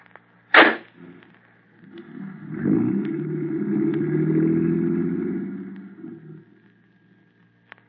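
A sharp bang, then a car engine turns over and rumbles steadily for a few seconds as the vehicle pulls away, the sound fading into quiet.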